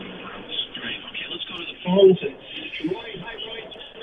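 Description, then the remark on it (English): A caller's radio plays in the background over a narrow, tinny telephone line during a call-in, muffled broadcast voices running continuously with a brief louder swell partway through. “Turn your radio down, okay, so we can hear you and you can hear us.”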